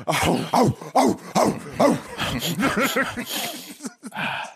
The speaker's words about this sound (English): And the last one, speaking of the dogs are barking.